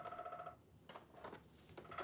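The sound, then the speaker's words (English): A bird clock sounds its electronic bird call: a steady two-note warble, a brief pause, then a few sharp chirps before the warbling tone starts again. No one speaks. “Bird Clock has come back from its sabbatical.”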